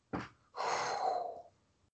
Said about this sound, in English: Sorry, I'm like breathing really heavy right now.